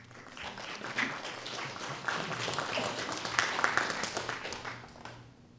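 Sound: audience applause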